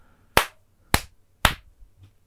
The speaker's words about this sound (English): Can you also snap real quick? Or clap or whatever.